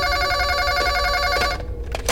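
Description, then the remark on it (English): A telephone rings in a radio studio with a steady, bright electronic trill, loud, continuing without pause before cutting off near the end. “And before you say anything, yes, you're on the air because the phone and this microphone seem to be the only things that are working.”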